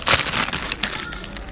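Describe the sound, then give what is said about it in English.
A crisp packet is torn open outdoors in very severe wind, with loud crinkling and crackling bursts of plastic, strongest at the start and then a few sharper rustles as it is pulled apart, with a low wind rumble beneath. “I'm going to open them before this very severe wind gusts them away.”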